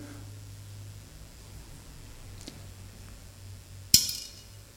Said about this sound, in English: If I, however, drop it in a bowl of water, you might even be able to see it from there, the difference that it makes. The ripple goes out, the ripple comes in.